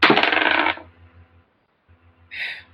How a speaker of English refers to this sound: Come on, dice.